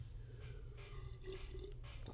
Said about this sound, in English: Today's beverage, because it is so late, I'm not doing coffee, I'm just doing water. Straight water out of an Nalgene bottle.